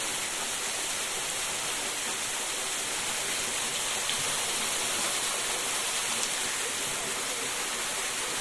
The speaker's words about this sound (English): So now I'm behind the waterfall. Oh, wow. And there are all these kind of... they're like stalactites on the ceiling, but they're actually branches that have just had water dripped and dripped and dripped down them.